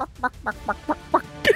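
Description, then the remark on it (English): A person voicing a character called Chicken Jim mimics a chicken with a quick run of about seven clucks in a steady rhythm, ending on a louder, higher-pitched squawk, with no other talking. “His name is a Chicken Jim.”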